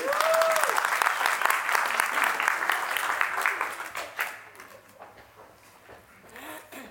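A group applauds with dense, rapid clapping that stays steady for about four seconds, then thins into a few scattered claps and fades, with faint murmuring voices underneath.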